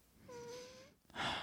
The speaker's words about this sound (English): But did my nose just whistle? Oh, wait, listen.